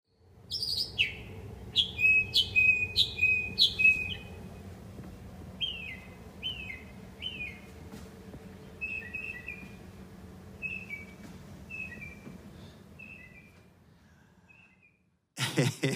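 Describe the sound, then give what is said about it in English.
Repeated high chirps from birds up inside a house chimney, heard from inside the house in a phone video: clustered in quick bursts then spaced calls fading over time, with a hollow, echoing quality and a low rumbling hum underneath; a sharp noise burst at the end. “Doesn't it sound like birds are in the house? Because they are. They're up in the chimney, and it echoes in the house.”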